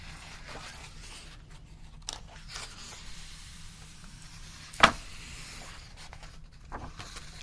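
Soft, irregular scratching of a colouring pencil across paper: faint brushy strokes come and go, with one sharper, louder scrape partway through. No one speaks.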